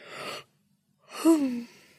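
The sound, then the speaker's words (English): A person yawns: a short breathy inhale, a brief pause, then a long drawn-out exhale with a rising-then-falling voiced groan, clear with no talking. “All this talk of yawning is making me have to...”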